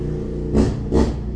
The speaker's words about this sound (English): See, was that needed? Was that really needed? He's just traveling down the street. Everything's fine. It's a little loud, and it's fine. I understand. It's a motorcycle. Yeah. It does make so noise.